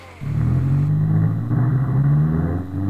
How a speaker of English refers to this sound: Meanwhile, a gritty 90s action hero drifts across the street in a race car.